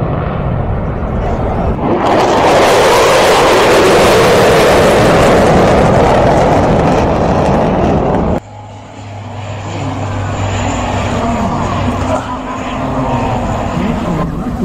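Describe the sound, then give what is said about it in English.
An aircraft engine roar sweeps past loudly for several seconds at an airshow, then drops away abruptly, leaving a quieter droning hum and faint background chatter. “Look at these things, how they're just flying by.”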